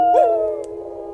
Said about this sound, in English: The children of the night, what music they make. I had no idea there were so many wolves in this city.